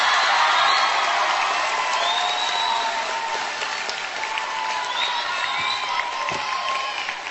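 A crowd applauds steadily with dense clapping throughout, joined by scattered cheers and whoops, loud and sustained for several seconds before easing slightly toward the end.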